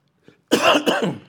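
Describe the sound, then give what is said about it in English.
A loud cough bursts out after a faint throat sound, with two or three harsh, raspy hacks running together over about a second before trailing off; a lingering, nagging cough during a Bible teaching. “Still got that cough.”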